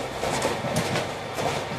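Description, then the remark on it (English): A subway train rolls steadily along the tracks, a dense rumble with faint rhythmic clatter from the wheels throughout, and no voices. “So we're going to move on to subway trains.”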